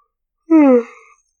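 A single loud yawn: a voiced, moaning tone that starts strong and slides downward in pitch, then trails off into a breathy exhale, with no one talking.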